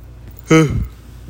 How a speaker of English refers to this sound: Yawn.